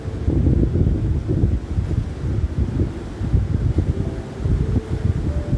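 A steady breeze blows across the microphone in low, rumbling gusts for several seconds, with no voices present and a faint tonal hum emerging toward the end.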